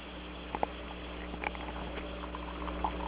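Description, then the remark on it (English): Hot coffee pours steadily into a cup, a soft continuous bubbling splash with a few small clinks, fairly quiet over a low steady hum, with no voices. “Okay, pouring the coffee.”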